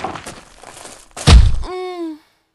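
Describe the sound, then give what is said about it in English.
Debris crumbles and rattles amid continued explosions before a heavy, booming thud lands, followed by a short, drawn-out groaning tone that fades out. “leaps into the barrage of falling debris and continued explosions to save this darling damsel in distress.”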